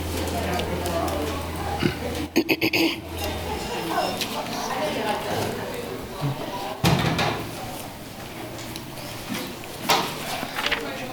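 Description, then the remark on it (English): A door in a city commission meeting room swings shut with a quick clattering bang that echoes briefly, followed later by a softer thud, over a low murmur of indistinct voices and room noise. “That door creates an echo.”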